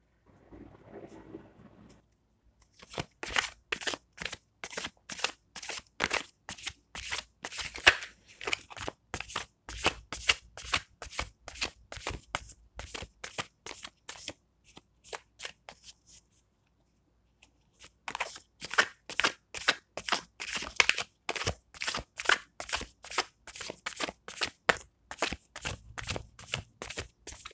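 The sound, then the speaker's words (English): A deck of cards being shuffled, with rapid, crisp riffling bursts repeating steadily for nearly half a minute and one brief pause midway. “Legit though, I've been here over like a minute shuffling these cards.”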